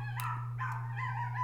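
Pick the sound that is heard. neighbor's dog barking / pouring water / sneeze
neighbor's dog barking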